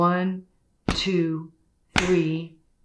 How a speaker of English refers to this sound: So you turn your baby upside down, head lower than the feet, and right in between the shoulder blades, you're going to give 5 back slaps. It'll look like this.